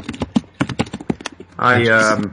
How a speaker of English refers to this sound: So that would be typing. Sorry.